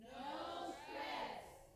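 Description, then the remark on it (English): A crowd shouts the two-word phrase "no stress" together in unison, recalled from a trip to Cape Verde. Two loud swelling bursts of many voices blend into one rising and falling chant over about two seconds. “Can y'all scream it out to me if you remember?”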